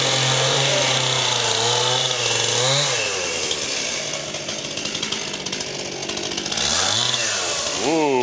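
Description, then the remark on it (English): A loud chainsaw revs up and bites into a wooden table, its engine pitch dipping under load and rising again as it frees, with dense grinding and rasping throughout. “Chainsaw works better than the axe.”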